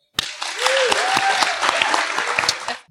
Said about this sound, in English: And with that, let us give a warm round of applause for our panelists.